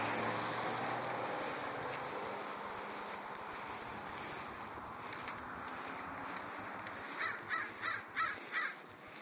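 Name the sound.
crow cawing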